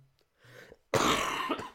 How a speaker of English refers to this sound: You should have muted your mic to cough, but that's okay.